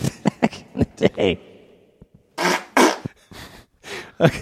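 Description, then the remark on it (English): A fart with a sucking, inhaling quality, fairly loud: a quick run of short sputtering bursts followed by several breathy, hissing pushes of air. “It's like somebody who can suck air in their ass. It sounds kind of queefy, actually.”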